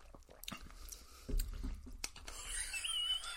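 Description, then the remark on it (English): Mouth sounds of someone sipping Athol Brose, a drink of Scotch whisky, honey and porridge oats: a soft thump, a few wet clicks and swallowing noises, then a drawn-out airy slurp toward the end. Nobody speaks. “But we're going to dive in with our, what's it called again? Athol Brose. Let's have a sip.”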